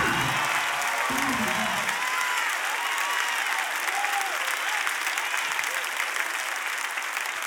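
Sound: audience clapping hands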